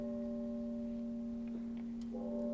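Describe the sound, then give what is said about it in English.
A tolling bell hums steadily, its low fundamental and bright overtones sustaining throughout at moderate loudness, with a slight renewed swell toward the end. No one speaks. “As the bell tolls.”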